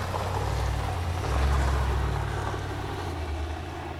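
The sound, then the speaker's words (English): A neighbor's truck engine rumbles steadily, a deep low drone that swells briefly as it drives past, then settles back to a constant hum with no voices. “We're gonna have one of our neighbors drive past us at this point.”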